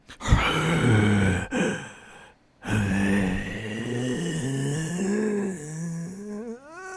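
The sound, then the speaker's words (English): Ghoulish, heavy breathing voiced as deep, drawn-out groans, loud, broken by two brief pauses and ending on a rising moan; a person seems to be imitating it vocally, as something or someone watching a woman in a film scene. “The camera cuts to a POV shot of something or someone watching her and making ghoulish breathing sounds.”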